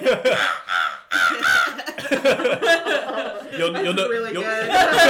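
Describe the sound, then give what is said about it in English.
A person imitates a crow's caw, letting out a string of loud, harsh, nasal squawks in quick succession, broken up by chuckling and laughter. “There's a crow. It's not a crow. It's me.”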